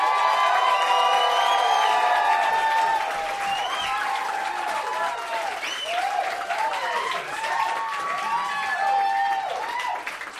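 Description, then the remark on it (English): A crowd applauds steadily and loudly, with whoops and cheering voices rising over the clapping throughout, sustained for about ten seconds without pause, as an audience votes with its applause for a contestant's Terminator entry. “So, pick a winner with your applause”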